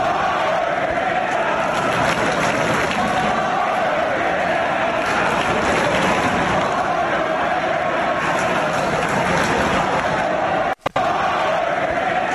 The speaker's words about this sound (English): And the funny thing is you're not alone, because here's a chant that went up from the Pittsburgh crowd in the middle of the game just because.